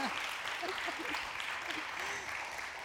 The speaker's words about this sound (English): You're getting lots of applause, girl. Okay, let's give her some more.